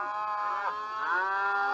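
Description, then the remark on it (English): Cows moo on a drizzly morning in a long, steady, droning low, with a second bellow rising in pitch just after the first, a rich harmonic call heard alone with no talking. “I think we've got a few friends here.”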